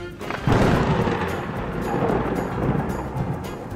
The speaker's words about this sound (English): The answer is a lightning strike.